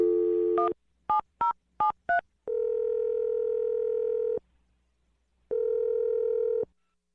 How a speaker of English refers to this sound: So I'm going to dial the phone number right now and I'll let you make your Awkward Tuesday phone call.